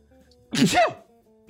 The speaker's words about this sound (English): hold on, I'm going to sneeze.